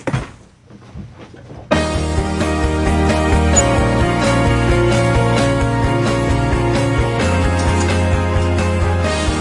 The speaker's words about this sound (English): Let's bring him in. There's his theme song.